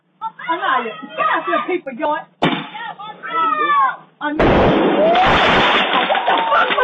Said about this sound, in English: But these three older women, their mothers and the kids, and I guess the dad is out lighting fireworks on the street. Something went wrong and one of projectiles went flying to the porch, and this African American mom loses her shit.